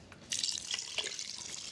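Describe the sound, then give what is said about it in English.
Two cartons of chicken stock are poured in a steady stream into a pot of rice and tomatoes, splashing with a bright continuous gurgling hiss and small drip-like accents, starting abruptly after a brief quiet moment. “So now I'll add the rest of the liquid. 2 cartons of chicken stock.”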